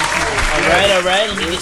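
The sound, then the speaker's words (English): Steady applause from a small group on the Rap Roundtable as a guest is brought in, a dense wash of clapping with people talking and calling out over it. “Applaud this man.”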